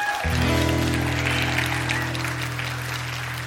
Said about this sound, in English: Everybody, round of applause, please